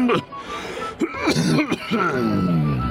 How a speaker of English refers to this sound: Unfortunately, the laugh is overshadowed by my miserable cough. I fear I have a slight affliction of the chest.